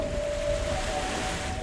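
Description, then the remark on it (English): Steady sea-wave ambience with a broad, washing surf roar and a gusty wind rumble, plus a faint sustained tonal hum running through it; no voices. “Oh, it smells like the sea here.”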